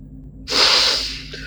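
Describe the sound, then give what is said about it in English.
One loud sniffle, a sharp hissy intake of air through the nose lasting under a second, then trailing off into quiet room noise. “Hillary is also not sobbing, but, you know, there's one heck of a sniffle”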